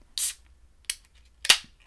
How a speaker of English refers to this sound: Anyways, this is called a soured light beer. It says 4% alcohol. And yeah, should I crack it open? Crack it.